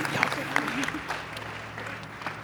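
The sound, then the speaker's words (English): A church audience applauding in praise of God, a steady wash of many overlapping claps with a few sharper bursts early on, while voices murmur and call out underneath at a moderate level. “Y'all not making enough noise.”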